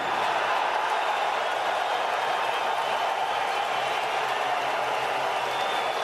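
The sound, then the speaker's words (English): A large crowd of Montreal Canadiens fans applauds and cheers steadily at the 2022 NHL draft, as Kent Hughes announces Juraj Slavkovský as the first pick. A dense, even wash of clapping and crowd noise holds at the same loudness for about six seconds without a break. “Now, we heard applause, absolutely applause from Canadiens fans, but it wasn't.”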